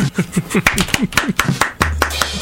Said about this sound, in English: I appreciate the applause. I don't think it's warranted, but I tried.